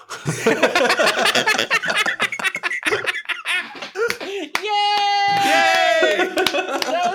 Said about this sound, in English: We got to keep the applause going because we got to.